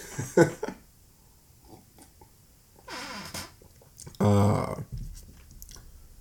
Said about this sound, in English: No, a sip of coffee.